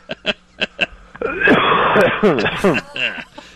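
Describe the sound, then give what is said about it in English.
Five quick, harsh coughs crackle through a tinny phone line, followed by a drawn-out strained groan with wavering pitch, fairly loud. “The cough into the phone.”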